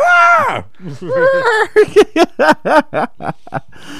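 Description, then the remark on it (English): A man's voice mimics a shrill, high-pitched womanly scream that swoops downward, then breaks into wavering yelps and a rapid run of choppy, laugh-like bursts, loud. “He F5'd it and just fucking, he did that womanly scream that he did.”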